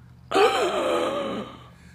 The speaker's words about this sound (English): I just gasped like Miss Brahms gasped when Peacock suggested that Mrs. Slocum might not know how to sell shoes.